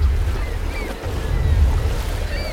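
A crew boat motors across the open North Sea to wind turbine 347, its engine a steady low rumble beneath rushing waves and wind buffeting the microphone, with faint high whines drifting above.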